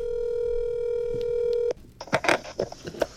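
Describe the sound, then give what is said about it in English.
A phone call being dialed and connecting: a steady electronic tone holds for under two seconds, cuts off abruptly, then a thin high-pitched tone continues under scattered clicks and rustling noises. “he's going to do the first part on the phone.”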